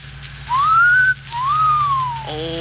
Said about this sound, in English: Well, then you should have made the whistle shorter, like this.